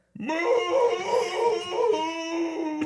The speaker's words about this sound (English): As I howled into the night. Only if it's a full moon.